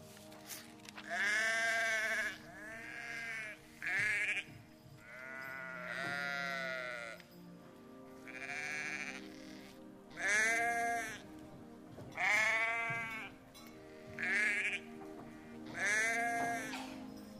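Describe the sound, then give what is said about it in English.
Sheep in fields at night bleat again and again, about nine loud, wavering calls, some overlapping as if several animals answer one another, with a low steady rumble underneath and no talking. “There were shepherds in the fields outside Bethlehem watching their sheep all night.”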